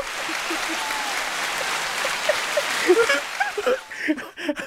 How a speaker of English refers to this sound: Y'all keep clapping.